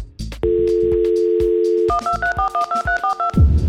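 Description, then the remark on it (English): A steady telephone dial tone hums for over a second, then about nine quick keypad dialing beeps follow in an even rhythm as a phone call is placed to a guest, with a thumping beat playing underneath. “Anyway, here he is, … on the phone.”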